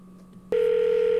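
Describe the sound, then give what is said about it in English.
After a brief stretch of faint hum, a loud telephone tone cuts in abruptly and holds steady at a single mid pitch, a phone line ringing through after dialing as a call is placed to Big Cat. “It's just, but now we'll fast forward just a couple minutes into the podcast to them calling Big Cat.”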